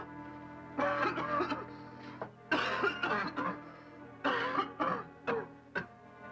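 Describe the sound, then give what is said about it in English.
A man coughs from the dust of curtains he has just opened, in several harsh, hacking fits with brief pauses between bursts and a few short, sharp coughs at the end, fairly loud with no talking. “He sets the candle down and opens those curtains that are so dusty they make him cough.”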